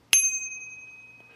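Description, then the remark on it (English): A small bicycle bell, just unwrapped as a present, dings once, sharp and bright, its high metallic tone ringing on and slowly fading over about a second. “I unwrapped mine. It was another bell.”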